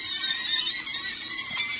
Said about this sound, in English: At first I thought it had a kind of a weird sound to it. It's frying sausage. Sounds like people screaming.